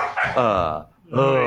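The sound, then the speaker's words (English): Dogs bark in two drawn-out, loud, tonal bursts separated by a brief pause, sounding whiny and agitated. “The dogs are doing a cranky.”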